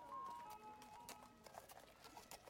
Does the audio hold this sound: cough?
no